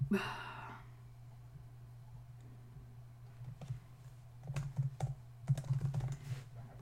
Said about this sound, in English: Again, I must be typing some really weird shit.